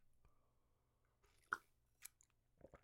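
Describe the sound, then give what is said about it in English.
Someone sips a cocktail from a tiny rocks glass with a heavily sugared rim, with a few sharp, crunchy bites and chewing of the sugar grains, over a quiet low hum. “All right, let's try this stupid drink.”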